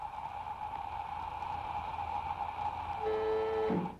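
A steady rushing hiss of air flowing into an airlock as it fills up, with a constant humming tone beneath it; near the end a brief, louder whine with layered pitches swells in, then cuts off. No voices.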